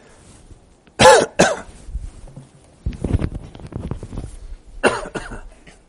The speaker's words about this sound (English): Sorry about that. Cough the wrong direction.